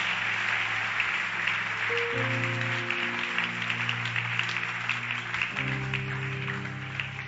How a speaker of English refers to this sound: Oh, continue to clap your hands, somebody.